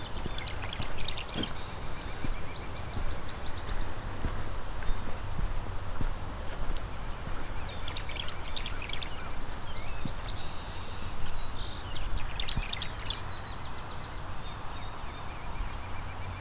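Tree swallows give bursts of gurgling, twittering calls, high-pitched and liquid, coming in scattered clusters over a steady background rumble with no one speaking.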